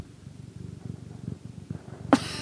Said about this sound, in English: Oh. She just yawned into the mic. It was so cute. Little cat ASMR. Is she purring? I think so. She's not chirping, though. Just I know. She usually chirps.